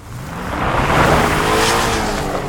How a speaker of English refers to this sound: Zeke, you run out just in time to see that Angela's parents' car peeling away out of in front of Flo's house.